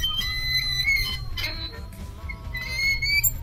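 An unoiled seesaw squeaks in long, high-pitched creaks that rise and fall in pitch, repeating in a few strokes over a steady low rumble, with no talking.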